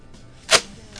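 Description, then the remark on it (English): A party blowout noisemaker gives one quick, breathy rush of air with a papery rasp and no whistle, lasting about a tenth of a second against quiet background. “No, they're just the blowouts.”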